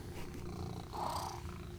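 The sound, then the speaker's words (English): A cat named Aster purrs steadily, a continuous low rumbling drone with a soft rhythmic flutter, fairly quiet and uninterrupted, with no voices over it. “You're gonna have to deal with the purring.”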